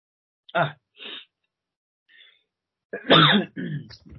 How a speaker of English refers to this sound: Two seconds in, I'm sneezing. Sorry.